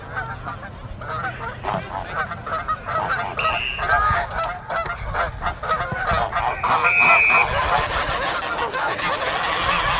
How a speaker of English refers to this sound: You just want 1,000 geese hissing or something.